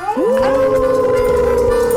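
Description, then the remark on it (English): A sustained, loud howl rising into a long steady wail, voiced by people imitating wolves, holding one drawn-out tone for the full two seconds with no other sounds. “we going to howl at the Moondog”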